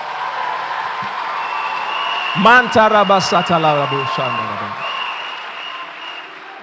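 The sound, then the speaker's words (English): A church audience claps for Jesus Christ during a sermon in a steady, dense wash of applause throughout, while a man's raised voice calls out over it for a couple of seconds in the middle. “Clap for Jesus Christ.”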